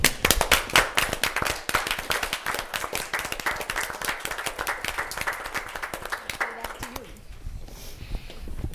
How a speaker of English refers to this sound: And I just stand up and applaud you who were here and all of you, and I ask you to join me in thanking them for the great work that they do.